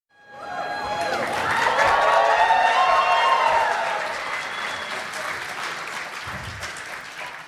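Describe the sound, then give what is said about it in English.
A live crowd at RTX bursts into loud applause with whoops and cheers rising over it, peaking in the first few seconds and then settling into steady, dense clapping that continues to the end. “And now, cue the crowd.”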